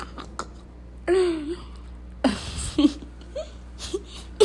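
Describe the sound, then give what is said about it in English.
A couple of harsh, breathy coughing bursts break a quiet stretch, mixed with strained, voiced throat sounds and short gasps. No one speaks. “I'm coughing.”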